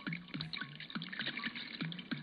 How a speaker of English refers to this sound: Hey, it's Thirsty Thursday, man. Let's pour one out.